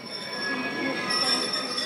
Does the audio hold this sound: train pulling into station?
yes